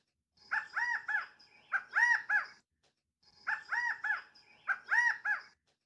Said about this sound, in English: Now that is a glorious and pleasing sound coming from such a little quail bird, said the queen quail.